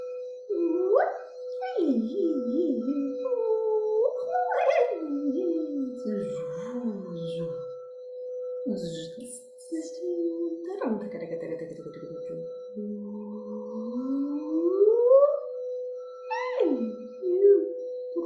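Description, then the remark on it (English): A human voice imitates dolphin calls as light language, with warbling, gliding squeals and whistly sweeps, fairly loud. It continues throughout over a steady, sustained tone, with brief pauses between phrases. “I'm now hearing sounds. They sound like dolphin sounds, and I think they want me to do light language, but I haven't done it in a while, so I don't know what sounds are gonna come up.”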